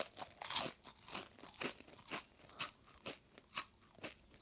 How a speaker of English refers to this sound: And we're going to change the crunching sounds that you will hear as you bite into each one. And this time, think not about sweetness and bitterness, but think about how crunchy, crisp and fresh that potato chip is.